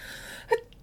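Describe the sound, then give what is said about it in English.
A tiny, stifled sneeze: one quick, soft burst about halfway through, quiet, against a faint background hiss with no talking. “Watching my wavelengths, it was like the tiniest little sneeze”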